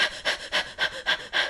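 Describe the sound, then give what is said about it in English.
A voice imitates the heavy, rapid panting of someone breathing in their sleep: six breathy bursts in a steady rhythm, moderately loud, with no words spoken. “Yeah, she was like, you were breathing like this.”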